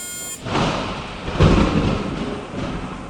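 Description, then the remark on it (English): Heavy rain hisses steadily while a deep roll of thunder swells in around the middle and rumbles on, loud, with no voices. “This rain is really starting to annoy me.”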